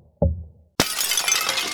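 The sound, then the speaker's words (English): A dull thump on a wall, made while feeling for a window hidden behind wallpaper, is followed a moment later by a loud crash of window glass shattering, with bright shards spilling and tinkling for over a second. No one speaks. “You want that I should go back to the store and get some glass?”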